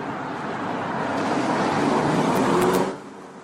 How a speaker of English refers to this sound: Hold on. Car.